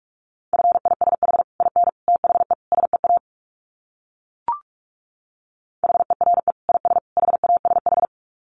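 Fast Morse code at 45 words per minute in a steady mid-pitched tone, rapid dits and dahs keyed in two bursts separated by a pause broken only by a single soft pop.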